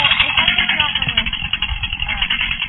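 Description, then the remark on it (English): A chainsaw runs steadily, a loud, continuous raspy buzz over a rough low rumble, holding an even pitch without pauses for the whole few seconds. “I'm sorry, I can't hear you over the chainsaw.”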